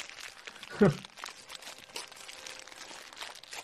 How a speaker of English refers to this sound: Take the paper off, bro. Why? It's a wrapping paper, bud.